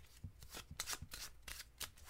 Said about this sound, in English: All right, I'm shuffling my cards. I got a deck of superiors.